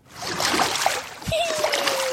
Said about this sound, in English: And she was playing in the toilet. It was so embarrassing. Like the thing she was like saying. Splashing around. And oh, it was so strange.